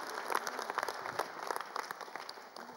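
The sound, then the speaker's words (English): An audience clapping together in praise to God, a dense, steady patter of many hands at moderate loudness for a few seconds, with no voices standing out. “You are clapping to God, not to me.”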